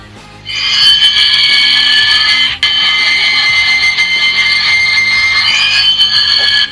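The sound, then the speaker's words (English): A loud, shrill electronic alarm clock rings continuously for about six seconds, cutting out for a split second partway through before resuming, with no voices present. “Yeah, that must have been my alarm clock.”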